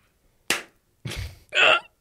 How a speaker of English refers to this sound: Syncing with camera. I need a louder clap. Do it.